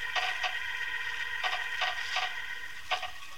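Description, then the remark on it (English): Short, shrill squeaks of nails pulling from wood as a box lid is pried up, coming in uneven bursts of about six, some paired, over a steady low hum. “He's taken the lid off the box. I can hear the nails squeak.”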